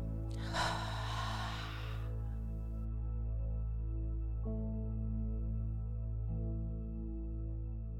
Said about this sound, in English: So we're going to go in through the nose and out through the mouth. Deep breath in and out. In and out.